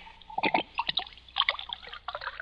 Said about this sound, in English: But before I do, pour me another glass of wine.